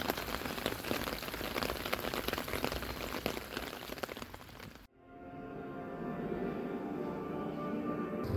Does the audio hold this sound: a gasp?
no